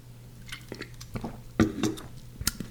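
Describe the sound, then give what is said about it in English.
Someone sips a drink: soft wet slurps and a swallow, a few small clicks, and a bright glassy clink near the end, all over a faint steady hum. “Now I'm going to take a sip of my drink.”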